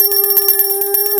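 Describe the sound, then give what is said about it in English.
A bell rings loudly and continuously for about a second, a rapid trilling clatter over a steady tone, then cuts off abruptly. No voices accompany it. “That is the bell of joy, all right?”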